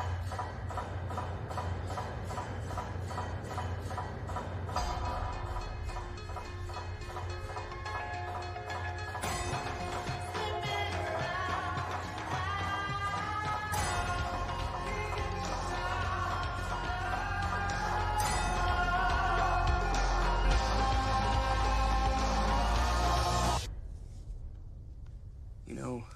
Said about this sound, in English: Now remember, try not to move. Even just a little bit. Stiles, you're going to hear that noise now. It's gonna be a loud clanging, kind of like a hammer hitting an anvil.